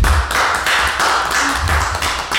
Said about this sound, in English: Hey, man, listen, everybody clap for her.